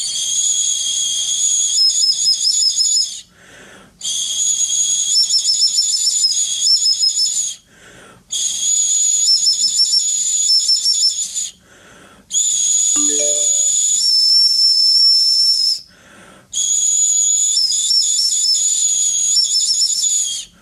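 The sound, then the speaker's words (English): A 12,000-year-old bird bone flute plays shrill, breathy whistling tones in five sustained phrases separated by short pauses, with faint warbling shifts in pitch and a brief lower blip midway. No voices. “12kyo Bird Bone Flutes”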